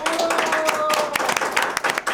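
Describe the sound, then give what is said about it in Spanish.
A live studio audience applauds steadily for the show's virtual audience, many hands clapping in a dense, loud patter for about two seconds, with a faint high whistle-like tone threading through the first half. “Y hoy nuestro público presencial le va a dar un aplauso a nuestro público virtual que está aquí con nosotros.”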